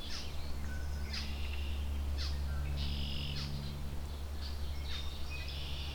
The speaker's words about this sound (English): Lots of red-winged blackbirds, including some juveniles, it sounds like.